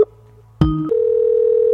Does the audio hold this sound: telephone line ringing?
yes